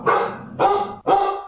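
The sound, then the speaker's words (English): Dogs bark loudly, three sharp, full-throated barks in quick succession about half a second apart, with no voices. “the dogs, they hear his name, they don't like him.”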